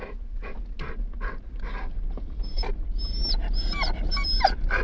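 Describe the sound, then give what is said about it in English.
A dog named Brownie, excited to be back at the house, pants rapidly in short breathy bursts, then breaks into high, wavering whines and whimpers, fairly loud against a low background hum. “Oh, Brownie, they cannot understand me as it is, let alone with you whining.”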